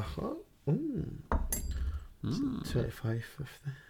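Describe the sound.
Metal cutlery clinks and rattles in a few short bursts as someone rummages through a drawer, with people talking over the clatter.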